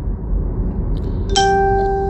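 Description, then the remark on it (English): A phone notification ding sounds once over a steady low rumble, a bright bell-like tone with clear ringing overtones that holds and slowly fades. “As a notification goes off, that's a good thing. Hear the ding.”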